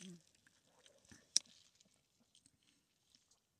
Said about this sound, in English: Give me one quick second. Let me have a sip here.